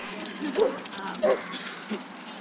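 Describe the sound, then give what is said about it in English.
A dog at a dog park gives two or three short, whiny barks spaced about a second apart, set against a steady outdoor background hiss, not very loud. “There's a woman chastising her dog for stealing another dog's toy.”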